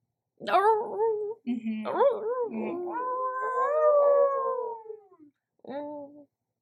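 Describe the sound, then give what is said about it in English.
A person's voice imitates a dog's bark-moan howl: a short yelping bark, then a long, wavering moan that rises and slowly sinks over several seconds, ending with one brief yelp. “And, and there's a lot of, it's like a bark moan.”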